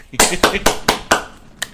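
Hands clap five times in a quick, steady rhythm, each clap a sharp, bright smack, followed by one softer clap after a short pause.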